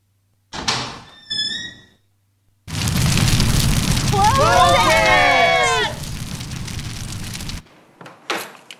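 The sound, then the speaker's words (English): A hot door is handled with a short creak and knock, then swings open onto a loud, roaring rush with squealing creaks before slamming shut and cutting the noise off abruptly. “Oh, man, this door here is hot.”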